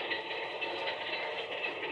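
A steady, even hiss and rumble of a moving passenger train's interior, holding at a constant, fairly low level for the whole two seconds with no voices or distinct events.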